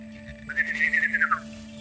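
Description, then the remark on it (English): A person whistles a short, warbling birdlike trill imitating a mechanical bird. It rises and then dips over about a second, fairly clear above a faint steady electrical hum. “You're some sort of gadget that collects money and then whistles at me.”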